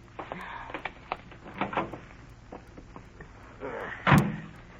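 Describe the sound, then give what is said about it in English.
Car door sounds: a handle click and a series of rattling, shuffling clunks as the door opens and someone climbs in, ending in one solid, heavy slam. “Get in the car.”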